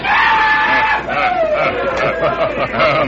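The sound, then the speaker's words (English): A loud, drawn-out yell from a rider at an afternoon rodeo cuts through the roar of a large crowd, its pitch sliding downward before more shouts and cheers swell around it, all continuous. “Time after time, they heard a familiar yell.”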